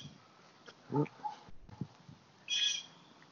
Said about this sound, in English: Damn, there's little squawking birds everywhere.